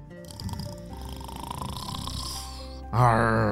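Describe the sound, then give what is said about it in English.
A man, a pirate who has crashed into the water of a lake, snores loudly, a long rasping, rumbling breath that ends in a sudden, stronger throaty snort. No one speaks. “But this pirate had somehow crashed into this water and was now snoring,”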